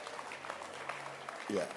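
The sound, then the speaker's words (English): Steady applause from an audience clapping for their leaders, a dense patter of many hands clapping throughout, with a voice rising over it near the end. “Clap your hands for our leaders.”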